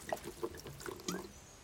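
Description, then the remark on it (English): Water being poured or drunk, with a few soft gurgles and sloshes spread over a brief moment. It is quiet and low-level, and no one speaks. “Want some water?”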